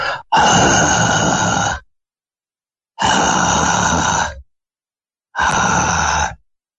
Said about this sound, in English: Okay, it says deep breathing needed. Deep.